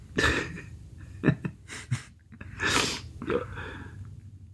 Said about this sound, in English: That last one that made us cough. Aye. Just levelled us.